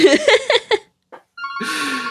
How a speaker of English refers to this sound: Sorry, there's a phone call.